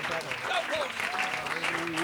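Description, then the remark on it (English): An audience claps steadily throughout in praise to the Lord, a dense wash of many hands, with voices calling out over the reverberant applause. “Come on, would you clap your hands unto the Lord all across this house?”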